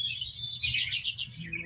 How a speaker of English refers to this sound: You sure that's a morning dove?